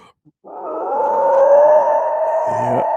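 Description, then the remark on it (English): A voice imitates a howler monkey call: one loud, sustained, roaring moan lasting about two and a half seconds, rough and throaty, with a brief lower grunting break near the end. “There's the howler monkeys.”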